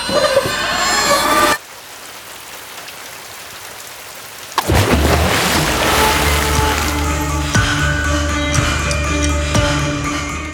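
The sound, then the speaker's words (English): A bumper car pushed off a boardwalk plunges into the water below: a burst of rushing, splashing water cuts off abruptly, followed by a hushed pause, then a sudden loud thunderclap with lightning that rolls into a long, deep rumble over steady rain. “It sailed off the boardwalk and plunged into the water below. I heard the splash, and then a clap of thunder and lightning filled the sky.”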